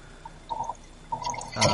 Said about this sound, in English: Okay, so three on three. So six cartridges. This is six pack of cartridges through a massive, I guess, like water bong.